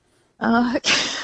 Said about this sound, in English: But you wanted a smell, don't you? Can you just? Can we just get a live use of your nose, like a sniff, live on the air, just so we can hear you in action.